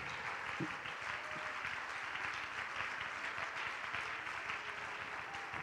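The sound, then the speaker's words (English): A church audience claps hands unto the Lord in a dense, steady wash of applause that holds at an even loudness for several seconds, with no clear individual rhythm and no voices breaking through. “Oh, clap your hands unto the Lord if you love him.”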